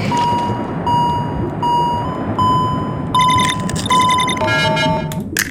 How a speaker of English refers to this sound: The faster the beeps get, by the way, the more air, or the less time you have to come.